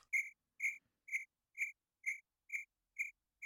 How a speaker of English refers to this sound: I was leaving silence to splice in a cricket sound there.